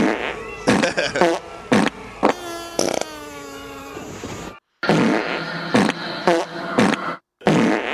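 A string of loud, sputtering fart sound effects from a sound-effect album, some short bursts and one longer wavering rasp, played back-to-back with brief gaps of silence between them.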